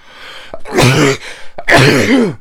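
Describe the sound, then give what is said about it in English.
Two loud sneezes in quick succession in Dr. Ouch's house, each a sudden breathy burst with a voiced edge, the second following about a second after the first. “So I've sneezed in Dr.”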